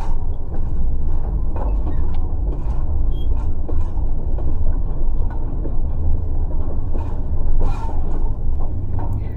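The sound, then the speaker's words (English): A train rumbles steadily along the tracks, a heavy, continuous low roar with faint metallic clicks and squeals flickering over it for the whole stretch. “It startles you, and instead of jumping, you fall directly under the train.”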